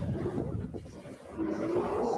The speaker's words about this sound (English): She's humming, but you can hear the bear.